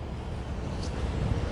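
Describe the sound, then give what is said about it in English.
A steady, dense rumble of city traffic with low engine drone and a broad hiss, with a brief higher whine rising midway. No one speaks. “Cars are bugging out in the city.”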